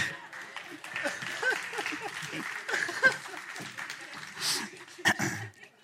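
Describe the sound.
An audience claps steadily for several seconds, a dense patter of hands under a murmur of voices talking over it, with one louder sharp burst near the end.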